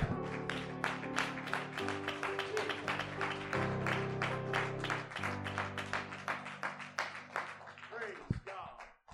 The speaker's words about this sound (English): Let's clap our hands before we're seated.